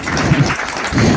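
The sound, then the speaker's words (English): An audience bursts into clapping at a comedian's bit about bubble wrap, a dense, steady patter of many hands that stays loud throughout with no voices over it. “Don't just clap if you know what I'm talking about.”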